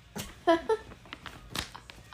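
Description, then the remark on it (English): A cat wanting to be let out gives two quick, clear meows in close succession over a quiet background with a few soft knocks and rustles. “Kitty wanted out as soon as we said that.”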